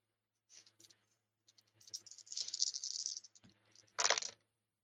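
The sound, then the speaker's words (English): Dice rattle as they are shaken in a hand or cup for a few seconds for an attunement roll, then tumble out with a louder clattering burst at the end. Fairly quiet, with no voices. “May I use one of our? Go for it. One of our dice.”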